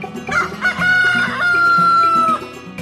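rooster crowing

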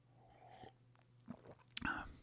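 sipping coffee

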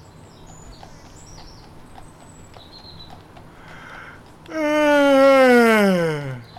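yawn

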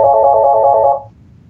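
phone ringtone ringing

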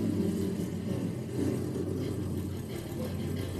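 high-performance car engine revving

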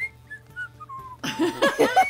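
whistling

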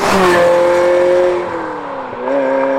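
ferrari Mondial T engine

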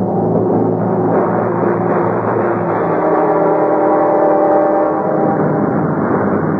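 airplane engine

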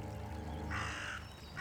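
raven cawing

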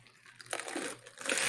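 sipping a drink

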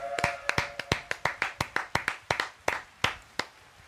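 hand clapping

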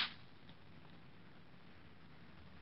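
slap across the face

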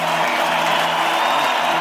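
applause

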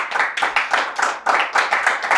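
audience applause

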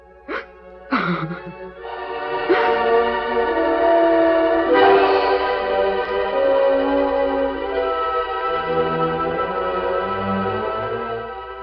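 train passing with horn

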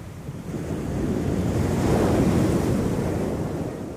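sea waves washing ashore

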